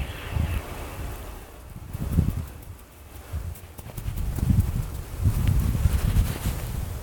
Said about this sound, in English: Tell you what, walking in snowshoes, not an easy task. At first, you get a hang of it after a while.